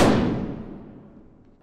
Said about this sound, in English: The shooting on the dance floor has become a little bit haphazard, but hearing that other gunshot, they all turn back to the bar.